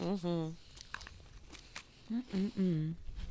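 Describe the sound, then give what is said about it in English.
Someone chews a lemon cream cookie with a slightly salty, biscuit-like base: a few short, crisp crunches and crackly bites, bracketed by hummed, pleased 'mm' sounds from the same voice at the start and end. “Sorry, I'm, like, chewing on the podcast.”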